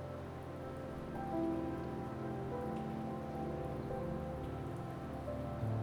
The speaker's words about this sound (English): Close your eyes and let the falling rain wash down upon you tonight.